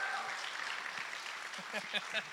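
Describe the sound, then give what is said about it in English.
An audience claps to welcome two guests invited up to share their story, in a steady, dense wash of applause that holds at an even loudness throughout, with a person starting to talk over it near the end. “So, you can tell who really likes you by, like, you just look around at who's not clapping.”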